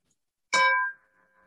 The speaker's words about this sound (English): It's a lovely bell sound, but it probably sounds like a thud on your end. Sorry, I still haven't made the attempt to figure out how to change that on Zoom.